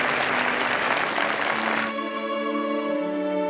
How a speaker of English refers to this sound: Just immediate dead sort of sound on the clapping. And that was good.